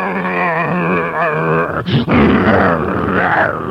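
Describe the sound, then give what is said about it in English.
A man's voice imitates the low, rumbling growl of a wolf dog, held for several seconds, loud, with a brief harsh break midway before the growl resumes. “Every time he takes a step, he goes...”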